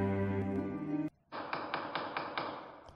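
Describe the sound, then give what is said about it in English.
A gavel sound effect bangs about five times in quick, even succession, each strike a sharp wooden knock, right after a brief sustained droning tone cuts off. “No, she wasn't gaveled to death.”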